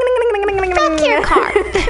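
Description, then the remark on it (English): A voice imitates a moped engine: a buzzing, droning tone slides steadily down in pitch, then breaks into a rough, gargling sputter for the last stretch. “So, what are your favorite moped sounds?”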